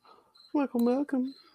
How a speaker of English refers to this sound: I hear we got some crickets in the audience tonight.